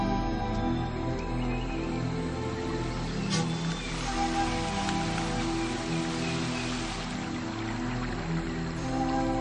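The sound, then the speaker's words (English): Steady rain falls continuously through a forest in the rainy season, a dense, even patter on leaves and ground with a low ambient hum beneath, unbroken for the whole stretch and with no voices. “Most of the 20 spear hunts Preetz has observed have taken place during the rainy season.”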